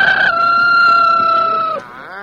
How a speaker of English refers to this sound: I got the rooster. Grab a hand now, quick. I got both hands, one by the foot, one by a wing.